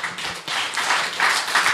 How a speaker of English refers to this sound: Would you give yourselves a round of applause?